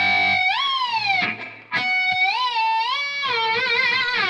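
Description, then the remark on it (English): Bright, bell-like guitar harmonics glide smoothly up and down in pitch, swooping between notes with a wavering, sliding quality over a low sustained tone, fairly loud with a brief dip midway. “So and you, you can make harmonics travel with that thing.”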